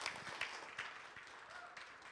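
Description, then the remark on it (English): An audience applauds steadily to celebrate someone's one-year milestone, many hands clapping together in a dense, even wash with a few sharper claps standing out. The applause holds at a moderate level throughout. “You heard the applause of people saying, a year, that's a big milestone.”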